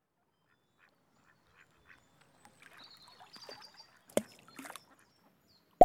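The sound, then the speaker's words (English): Faint duck quacks scattered across an outdoor duck pond, with a couple of sharp knocks or splashes near the end and no talking. “Why are you sitting so close to the edge of the duck pond?”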